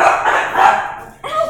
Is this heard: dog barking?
yes